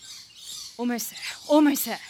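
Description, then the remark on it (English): A bird calls twice in quick succession, two short, harsh, throaty cries, over a steady background of high, thin chirping and twittering. “Stupid bird! Why didn't you stay a dinosaur?”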